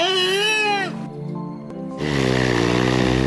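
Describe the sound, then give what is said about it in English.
A killer whale imitates human counting to one, two, three in three drawn-out, voice-like calls: a bright, warbling first call, a quieter lower one, then a loud, buzzy final call, all clear. “that was a whale sound check from my favourite moment of this year, when a killer whale counted to 1, 2, 3”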